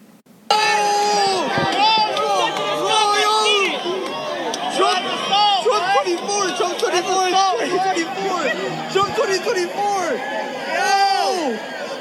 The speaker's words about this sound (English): Listen to the crowd as they implore the man to put his hat back on, how they yell out Trump 2024, and how they go into cheers when he finally does it. Just listen to this crowd reaction.